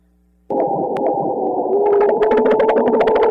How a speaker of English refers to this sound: This one's my favorite. It sounds like it's going to have the water bubbles, but there's a lot of diversity in sounds produced by marine mammals, and that's just to give you a sampling of what's out there.